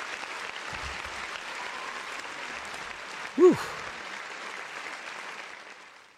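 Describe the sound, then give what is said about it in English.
Steady, sustained clapping from a crowd welcoming someone back to town fills the whole stretch at an even level, with a single voice briefly exclaiming partway through. “Clap it up for my brother”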